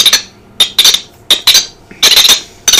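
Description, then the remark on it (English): Sharp, piercing whistles of marmots, large burrowing squirrels, calling to one another, ring out in a quick series of about seven loud, high-pitched chirps, some coming in close pairs, each starting abruptly and fading fast, with no talking. “Marmots talk to their friends using whistles. This is what they sound like.”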